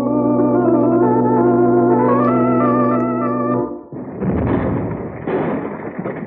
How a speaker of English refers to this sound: Well, that bonehead you hired to take care of the donkey engine overloaded the boiler. She let go and blew the pump house to smithereens.